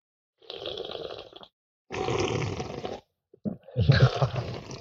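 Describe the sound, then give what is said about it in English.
Three wet, noisy slurping bursts, each about a second long, with short pauses between, as someone slurps beer into a microphone; the last is louder and more gurgling, like sucking beer off the top of a glass. “do you want to slurp into the microphone too?”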